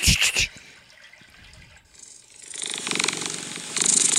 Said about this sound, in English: A cat purring? Yeah.